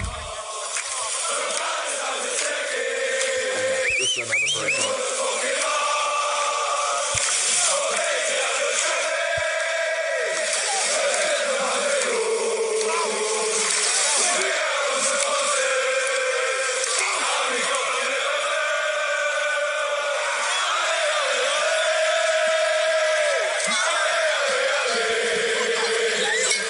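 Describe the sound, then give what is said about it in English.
A large crowd of football supporters sings a Liverpool chant, also heard at MLS matches, in unison: a steady, sustained melody carried by many voices with an echoing, open-air roar, loud and continuous throughout. “It's another one you see on every single MLS broadcast. It's pretty straightforward. It's a Liverpool chant.”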